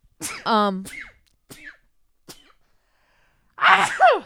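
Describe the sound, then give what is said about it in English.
A person sneezes loudly, a voiced intake snapping into a sharp burst, followed after a few quiet seconds with small clicks by a second forceful, breathy sneeze. “I bless you 1,000 times.”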